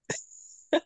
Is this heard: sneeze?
yes